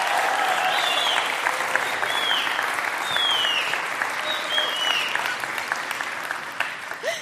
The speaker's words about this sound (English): So a warm round of applause as Kathy comes and joins us.